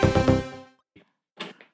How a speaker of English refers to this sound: Oh gosh. Cat's playing with the door stoppers again from the other side of the door this time.